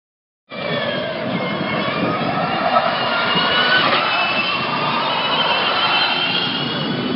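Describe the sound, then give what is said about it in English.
High-pitched electric whine of Formula E race car electric motors, with no combustion engine or turbos, a steady, loud wash of sound with rising tonal notes holding for several seconds, like cars streaming past, during Formula E testing at Donington Park, England. “And that, my friend, is from Formula E, which is no internal combustion engine at all, no turbos, just electric motors.”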